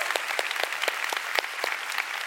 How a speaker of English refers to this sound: Come on, you want to clap? Give the Lord a big hand. Hallelujah.